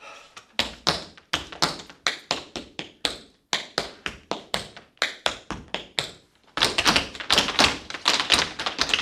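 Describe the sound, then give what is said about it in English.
Dance shoes strike a hard floor in crisp, rhythmic taps during an echo game in a dance class taught by a blind instructor, a steady patterned phrase, then after a brief pause a faster, louder flurry of clattering steps. No one speaks. “The shoes make the sound, and it's an easy form to catch onto because it's basically playing an instrument with your feet, so you rely tremendously on sound.”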